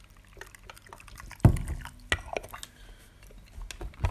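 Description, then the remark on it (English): Hot water is poured over already opened tea leaves for a roughly 20-second brewing, with a quiet trickle building into two sharper splashing bursts, then gentle dripping and settling liquid sounds. No one speaks. “So I'm going to go ahead and pour that same water in.”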